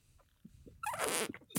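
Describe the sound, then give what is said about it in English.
A person blows out through tightly pressed lips, making a short, raspy buzzing burst that sounds like a trumpet, loud, after a brief quiet pause. “He would like, I don't even know how to describe it, but he'd like put his, like he'd like lock his lips together real tight. And then like breathe out through them, so it makes like a trumpet sort of noise.”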